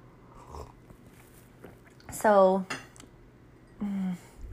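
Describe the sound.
A quick sip of coffee followed by a short, satisfied voiced sigh, then a couple of light clinks as the cup is set down, before a voice begins to speak.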